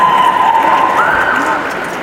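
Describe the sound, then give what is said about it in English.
An audience at a Korean drumming and dance performance with ribbon hats claps steadily in a dense, continuous patter that fades slightly toward the end, with a few voices mixed in. “Don't be shy, it's the right time to clap.”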